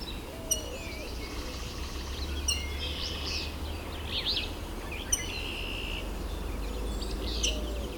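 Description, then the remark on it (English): At least two willow flycatchers call with short, sharp chirps and buzzy phrases, repeated every couple of seconds, over a steady low rumble of background noise. “At least two willow flycatchers here.”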